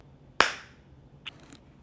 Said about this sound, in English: So if you clap, we'll get it on both recorders.